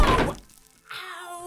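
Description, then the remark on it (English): A whole cabinet is knocked over, toppling with a loud, crashing thump that quickly dies away, followed by a short silence and then a steady, droning tone. “You knocked the whole cabinet over.”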